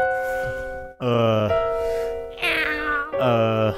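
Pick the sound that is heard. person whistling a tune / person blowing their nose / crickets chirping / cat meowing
cat meowing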